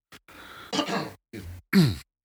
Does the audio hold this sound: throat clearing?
yes